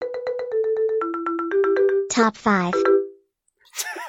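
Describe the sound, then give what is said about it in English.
A short, bright homemade jingle introducing a top five segment: quick repeated electronic notes stepping up in pitch, ending with a sung vocal flourish, then a brief silence before someone starts speaking. “Well, you'll be glad to know that I've created a jingle.”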